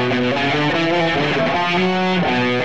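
A heavily distorted electric guitar plays a chugging riff, shifting between a few low chord positions in a steady rhythm, loud and dense with no talking.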